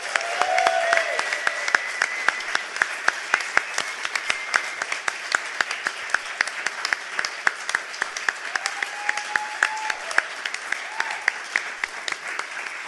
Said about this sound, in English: All right, ladies and gentlemen, a round of applause for the one, the only